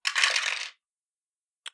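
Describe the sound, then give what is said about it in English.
A dense clatter of four dice, one of them a hunger die, tumbling across a tabletop for under a second during a strength brawl check, then quiet, followed by one faint click as something settles. “Just 4 dice, but only one of them's a hunger die.”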